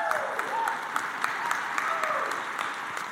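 A round of applause from a crowd, a dense, steady patter of many hands clapping at a fairly even level for a few seconds, with faint voices mixed in underneath.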